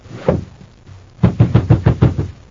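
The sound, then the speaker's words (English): In a Space Patrol radio drama, heavy, low thuds of fists pounding on a locked door of a sub-basement in Jupiter City as Buzz and Happy try to break it down: one blow, a short pause, then a rapid run of about seven loud, evenly spaced bangs. No voices are heard. “It's no use, Happy. We can never break it down.”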